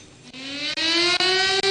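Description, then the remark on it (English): A loud air-raid style siren wails continuously, its pitch slowly climbing as it winds up, with a rich, buzzing harmonic tone and no voices, sounded during a moment of silence at a memorial ceremony in China for victims of the 1937 Nanjing Massacre. “The national flag flew at half-mast, the national anthem was played, and sirens blared as participants observed a moment of silence.”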